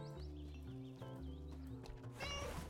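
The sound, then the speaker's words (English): In a video game, a caged cat meows a few times in short, rising-and-falling cries over steady, droning game music while the player frees it from the cage, ending with a brighter, louder burst of sound. “We free the cat from the cage”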